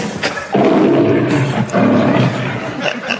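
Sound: lion roaring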